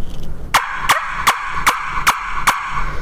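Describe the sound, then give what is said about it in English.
A turkey call is blown loudly, the way many beginners call, sounding six evenly paced, raspy yelps in a steady rhythm, each a short sharp note over a faint ringing hum, with no voices. “You know, a lot of beginners will get on a call and they'll kind of...”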